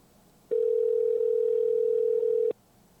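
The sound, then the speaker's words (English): A single steady telephone ringback tone sounds for about two seconds, clear, starting and stopping abruptly against a quiet background, with no voices. “Right, it's ringing.”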